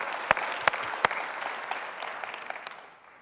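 A crowd applauds steadily, a dense patter of many hands with a few sharper, louder claps standing out early on, then the clapping gradually thins and fades out.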